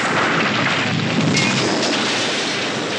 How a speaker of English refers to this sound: I'll tell you what, a train crash.